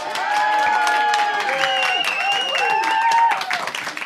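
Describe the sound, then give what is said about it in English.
An audience bursts into a steady round of applause, dense clapping sustained for about four seconds, with high whoops and cheering voices gliding over it before it starts to fade. “That's literally double the audience applause.”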